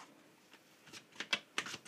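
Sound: tarot cards being shuffled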